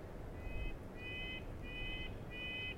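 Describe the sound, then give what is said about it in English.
A red-breasted nuthatch in a forest gives four nasal, evenly spaced calls, each short and slightly drawn out, over a steady low outdoor hiss, clear. “They constantly march up and down tree trunks, storing seeds to eat during the long, hard winters here.”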